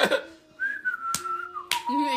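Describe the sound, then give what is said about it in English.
Someone whistles a steady, gently wavering tune, the notes sliding between pitches, punctuated by two sharp clicks like finger snaps. “I start whistling.”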